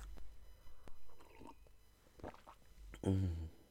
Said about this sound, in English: Another sip of coffee, bear with.